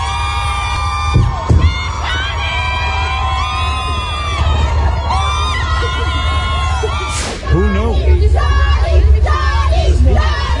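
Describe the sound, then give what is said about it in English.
A large crowd of women cheering and screaming continuously for Johnny Depp, high-pitched shrieks and yells layered over a loud, steady roar, with a brief spoken remark partway through. “But listen to this crowd of women going berserk for Johnny Depp.”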